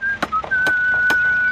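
A builder whistles a clear, high, mostly steady note with a small pitch step as he works, while sharp knocks strike at a steady rhythm, roughly every half second.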